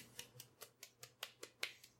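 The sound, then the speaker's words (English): Soft, quiet hand clapping: about ten light claps in a steady, quick rhythm, with no voices over them. “Why are you clapping softly?”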